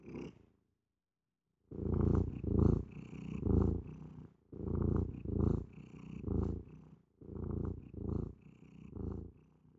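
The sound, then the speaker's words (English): A male cat purrs in steady, rumbling cycles, each inhale and exhale pulsing rhythmically after a brief silence at the start, with no voices present. “Just let him bring him in for the purr.”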